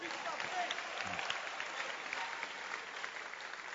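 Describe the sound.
An audience claps their hands in a dense, steady burst of applause that holds at an even loudness for several seconds, with faint crowd voices mixed underneath.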